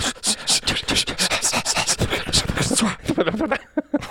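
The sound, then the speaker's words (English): Rapid, rhythmic panting while miming an 'invisible motorboat' face-dive: heavy breathy huffs repeating quickly for about four seconds, loosening into a few scattered vocal noises near the end. “I somehow started panting, and I also became Lin Shaye's landlady from Kingpin.”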